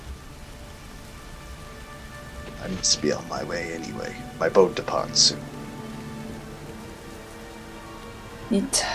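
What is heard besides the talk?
rain falling on surfaces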